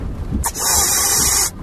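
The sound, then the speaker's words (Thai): Sonified black hole accretion data: a faint low rumble, representing weak accretion, gives way after an outburst to a sudden loud, steady rush of bright hissing noise, representing strong accretion, that holds for about a second, then cuts off abruptly. “ต้องแปลงทำซาวประกอบด้วย อันนี้คือดูดน้อยพอระเบิดปุ๊บดูดแรง”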